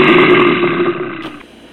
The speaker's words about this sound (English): But first, the Bears Growl.